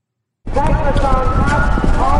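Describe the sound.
The hooves of a racehorse named Touchdown Tony, ridden by a jockey in a timber race, drum rapidly over turf in a loud, continuous gallop, starting abruptly after a brief silence, with a voice or crowd noise running underneath.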